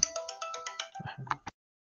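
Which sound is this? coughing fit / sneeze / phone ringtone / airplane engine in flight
phone ringtone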